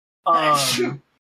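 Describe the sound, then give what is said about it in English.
A single loud, voiced sneeze lasting under a second, with a breathy, noisy burst over a strained, tonal vocal sound, followed by silence. “bless you. Thank you.”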